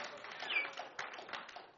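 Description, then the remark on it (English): A church audience gives a clap offering to Jesus as a guest speaker is welcomed: a steady, dense wash of handclaps, with a few sharper accents standing out and faint voices mixed in underneath. “A better clap offering unto Jesus.”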